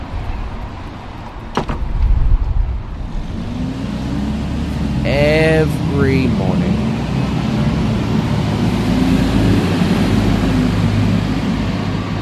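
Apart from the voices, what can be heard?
busy city road traffic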